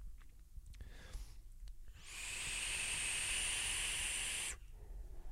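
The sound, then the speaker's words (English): A Cloud Chase RDA vape atomizer whistles from its airflow, even after the airflow was corrected: a steady, shrill, airy tone holds for about two and a half seconds, then cuts off, with faint low rumble and a few soft clicks before it. “Well, whistling aside, it's got a great deck.”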